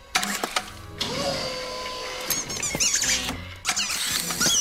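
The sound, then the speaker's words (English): High, wavering squeaks of little green alien rubber squeak toys in a claw arcade game, as in the film Toy Story, chirp several times over a steady mechanical whirring hum, moderately loud, with no voices. “The claw had a starring role in the movie Toy Story when Woody and Buzz Lightyear ended up in an arcade game filled with little green alien squeak toys.”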